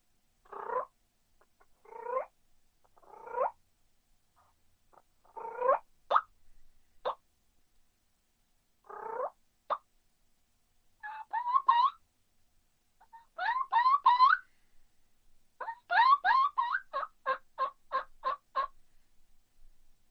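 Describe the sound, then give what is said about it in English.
Turkey sounds made by a person on a diaphragm mouth call: a few soft purrs and scattered clucks, then a quick, evenly spaced kee-kee run of high whistled yelps, fairly loud with no talking. “Just kind of some purrs, couple clucks, and then kind of a Kiki and Kiki run.”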